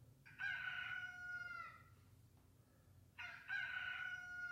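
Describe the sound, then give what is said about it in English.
Two loud rooster crows, each a drawn-out cock-a-doodle-doo with a brief pause between them, over a low rumbling background. “Why is there a rooster and a gun?”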